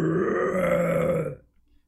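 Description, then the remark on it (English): An elite, an enemy creature in a fight, lets out a loud, guttural angry roar toward Noodle, holding steady for over a second, deep and growling with a harsh rasp, then fades out quickly into silence. “An elite lets out an angry roar in Noodle's direction.”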